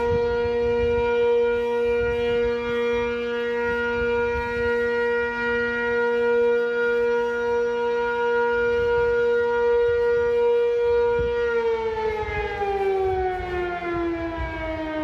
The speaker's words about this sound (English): I'm walking and the 12 o'clock alarm just went off at the firehouse.